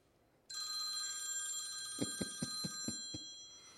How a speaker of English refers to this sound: And the bell rings.